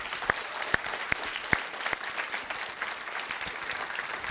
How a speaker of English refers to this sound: So we'd like all of our veterans to stand. All our veterans, those who served. Okay, let's give them a round of applause.